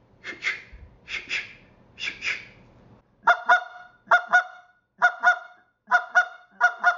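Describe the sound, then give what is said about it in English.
A goose call blown in double clucks: three breathy, rough bursts, then five crisp, evenly spaced two-note honks in a steady rhythm, loud with no talking. “You know, that week, start working on this double cluck, because guys are always, now they got the cluck, they want to learn the double cluck.”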